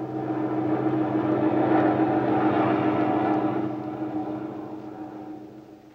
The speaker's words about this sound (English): There's a lone unidentified plane over your area.